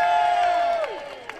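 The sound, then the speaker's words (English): An audience at a climate rally claps and cheers for communities across Victoria working to make Victoria gas-free, with a sustained high whoop or whistle that slides downward before the noise tapers slightly. No one speaks over it. “Can I get a clap for that?”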